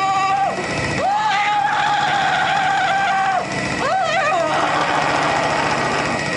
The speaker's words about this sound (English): And there is like a 355 horsepower engine thrusting a dildo into her ass so hard and so fast that her vag lips are flapping in the wind.